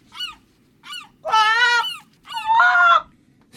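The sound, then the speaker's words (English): Seagulls calling loudly: two short yelps followed by two longer, harsh wailing cries, with a low rumble of background noise underneath and no voices. “In fact, I must go and feed the seagulls. Can you hear them?”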